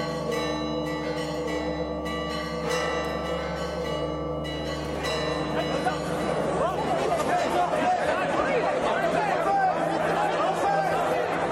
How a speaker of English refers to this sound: The bells are incredibly loud, though that helps somewhat with the jet lag. And frankly, the sound of bells is preferable to some other sounds for which the sepulcher has become known.